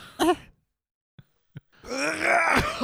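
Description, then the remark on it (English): Someone performs theatrical, exaggerated coughing: a short groaning burst, two faint throat clicks, then a long, drawn-out strained hack with a moaning, voiced quality. “Order now the compilation of the world's best coughs.”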